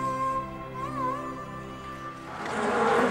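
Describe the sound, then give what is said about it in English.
A steady, droning buzz of a swarm of bees in an eerie, dilapidated old Mughal building on a riverbank in India, its pitch wavering briefly, before a broader rushing hiss swells up near the end. “Eerie, dilapidated building, which today seems only to be home to a swarm of bees, was once the home of Mumtaz's eunuch.”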